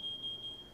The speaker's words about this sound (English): We shouldn't do that. It's an actual fire alarm. That would prank people.